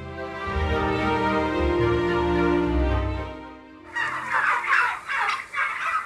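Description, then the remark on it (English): A flock of turkeys on a family farm in Biggar gobbling loudly, a dense overlapping chorus at first, then sharper bursts of rapid gobbles in quick succession toward the end. “This was recorded before the avian flu outbreak, so happily we were able to visit with some of their birds on the family farm in Biggar.”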